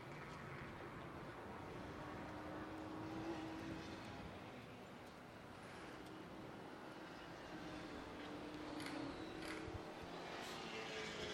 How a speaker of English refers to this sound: Cars coming across the line. Turner number 95. BMW. Cameron Lawrence in the G82.